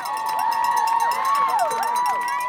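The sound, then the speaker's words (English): College spectators at the Wellesley Scream Tunnel scream and shriek without pause for passing marathon runners, many high voices overlapping into a loud, sustained wall of cheering. “Another tradition here at the Wellesley Scream Tunnel is for college spectators to kiss passing runners.”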